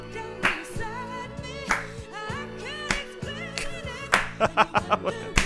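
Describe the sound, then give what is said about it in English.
Hand claps ring out over tuneful background music, first a few spaced claps and then a quick run of sharp claps near the end. “Don't clap.”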